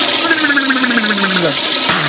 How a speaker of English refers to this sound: If we think you need to be wakened out of your delusions, we will stick your head in the toilet, flush it, and give you a swirly.